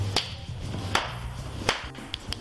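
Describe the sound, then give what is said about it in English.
Sharp slaps ring out at irregular intervals, three loud cracks followed by a few quicker, softer ones, over a low steady hum with no talking, as a person underneath some stairs outside an apartment building or motel slaps or claps their hands. “And now the crackhead is slapping his or her.”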